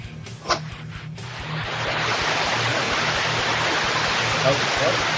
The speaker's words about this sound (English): What the heck is that? Who's in the shower?